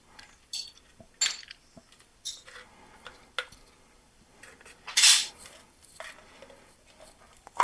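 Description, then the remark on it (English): A paper seal being peeled off a container with a thick plastic lid: a series of short, crinkly rasps and scrapes, with one louder tearing burst partway through, and no voices. “And we're going to get the paper off.”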